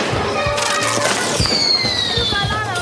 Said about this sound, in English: Kids are setting off fireworks in the Medina. Incoming.